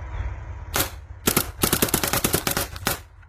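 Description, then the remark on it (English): An early-2000s paintball marker with a taped-on hopper fires one sharp pop, pauses, then lets off a quick burst followed by a rapid, slightly uneven string of about a dozen snapping shots over a low steady hum. “Oh, all the early 2000s paintball problems. Let's give it a rip.”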